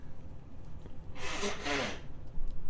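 A single forceful nose blow into a tissue, a rough, breathy rush of air in two quick pushes lasting under a second, close to the microphone, with quiet background before and after.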